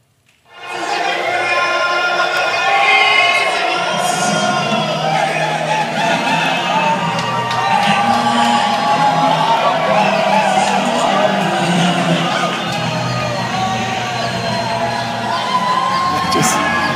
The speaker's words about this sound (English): Absolutely love that. People are cheering. People are screaming. It's 6:30 in the morning. And they know the wake-up call is for the entire hotel.